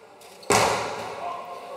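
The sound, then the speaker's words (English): A single hard hammer blow against a painted mural on a wall, struck to mimic the sound of gunshots, lands with a loud, sharp crack, then a resonant boom lingers and fades over the next second amid faint room noise. “He started to strike the mural with the hammer, mimicking the sounds of gunshots.”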